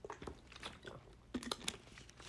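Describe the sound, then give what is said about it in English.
Someone drinking water: a string of irregular wet clicks, sips and gulping swallows, with a louder cluster of sharp mouth and container noises partway through, and no talking. “Give me one second while I drink some water.”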